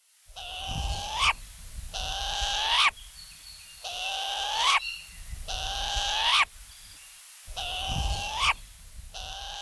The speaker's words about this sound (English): Kueo, or Hawaiian short-eared owl, is our only native owl and is important in Hawaiian culture as an aumakua. Kueo are active mainly during the day, unlike the more common barn owl, which is mostly seen at night and has a striking white face.